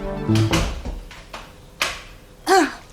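Three or four quick footsteps lead up to the door of a treatment room being pulled shut, followed by the click of a lock, with a brief squeak near the end. Sharp sounds and no voices.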